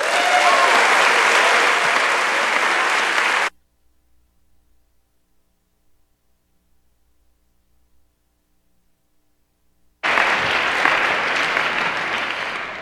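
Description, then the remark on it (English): Loud, sustained applause from a sizable audience welcoming a guest speaker on biblical principles of money and generosity fills the first few seconds, breaks off into near silence, then a second burst of clapping returns toward the end. “Well, with all that applause, why don't we just close in prayer?”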